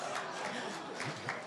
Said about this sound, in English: So, y'all clapping, you're crazy.